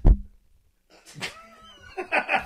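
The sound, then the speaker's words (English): After a short thump and a pause, a voice mimics a cat, giving a few drawn-out, wavering meows in quick succession, moderately loud. “Just meow, meow, meow, meow, meow, meow.”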